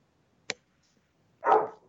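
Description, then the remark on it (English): A dog gives a single short, clear bark at her squeaky toy, shortly after a brief sharp click, with quiet around it and no one talking. “What is she barking at? Her squeaky toy. Stupid dogs.”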